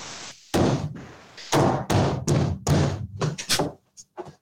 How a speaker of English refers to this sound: What's the stomping?